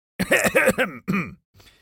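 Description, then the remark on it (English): A loud, theatrical cough: three or four rough, throaty bursts in quick succession, then a brief pause and a faint trailing breath. A pirate captain makes it after crossing the room to a table of pirates at the Sail Inn. “Captain Jim made his way across the room to the table of pirates and coughed loudly.”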